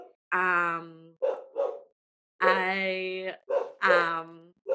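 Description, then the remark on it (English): A male dog barks in two bursts, mixing drawn-out, almost howling yowls with quicker short barks, separated by a brief silence. No one talks over it. “I'm just listening to the dog situation.”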